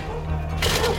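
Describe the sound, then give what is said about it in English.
Police forcing entry through the front door of an address on a search warrant: after a low steady hum, a sudden loud crash with a rough, splintering burst of noise that rings on briefly. “So when I say roll through, because this person is wanted for 20 to 30 offences and serious offences, you're not knocking on the door. We're going through the door.”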